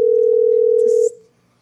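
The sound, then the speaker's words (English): A steady, loud telephone dial tone holds one unbroken pitch for about a second and then cuts off abruptly, leaving faint line hiss and a brief soft rustle, while calling back Austin Children's Hospital. “I'm going to call back.”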